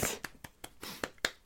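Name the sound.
hand clapping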